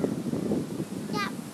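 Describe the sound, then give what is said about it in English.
Wind buffets a microphone outdoors on a very windy day in a steady, low rumbling roar that fills the whole clip, with a brief high squeaky chirp breaking through near the end. “It's really windy again today, isn't it? Yeah. I think our microphones are going to pick up nothing but wind.”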